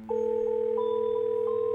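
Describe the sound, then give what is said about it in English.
A steady, continuous telephone dial tone hums clearly and alone, held at an even level with no voices, as a call is about to be placed. “could you call her now?”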